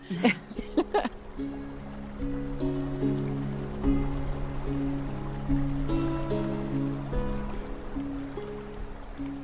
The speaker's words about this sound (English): And it really enhances our aquifers to get this kind of nice, steady, day-over-day monsoon rain. And I can hear it right now.